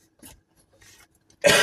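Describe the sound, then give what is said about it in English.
A loud, raspy cough bursts out close by at the end, preceded by a couple of faint, muffled breathy sounds in an otherwise quiet moment. “Coughing again, I'm soddy.”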